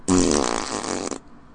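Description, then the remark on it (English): One loud, drawn-out fart lasting about a second, raspy and buzzing at a low pitch, then cutting off abruptly. No one speaks over it. “Coming out of a butt!”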